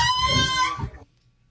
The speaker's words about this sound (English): Ooh, that's a chicken. So close. That is a baby goat.